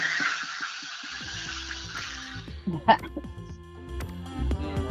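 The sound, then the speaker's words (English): An upset gong sound effect: a rushing, hissing swell gives way to a sharp metallic strike near the middle, followed by several sustained, shimmering ringing tones that linger to the end. “So the upset gong that goes like this.”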